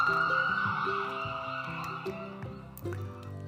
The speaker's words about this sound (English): The shocked audience went silent when they heard the ambulance siren.